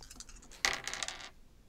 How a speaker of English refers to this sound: Yeah. Rolling your two dice and then add your link.